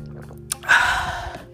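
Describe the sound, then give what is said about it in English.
A short slurping sip of tea: a faint click, then a breathy, airy slurp lasting under a second that trails off quietly. No one speaks. “Let me just get one more sip.”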